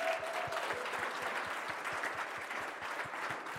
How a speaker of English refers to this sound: Let's give the Lord another big hand.